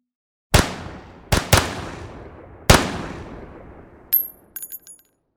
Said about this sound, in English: It didn't take long before shots were fired.